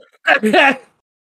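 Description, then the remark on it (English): A short vocal burst of a person laughing and coughing at the same time: a strangled laugh breaking into a cough, voiced and choppy across a few quick pulses, then silence. “I just laughed and coughed at the same time.”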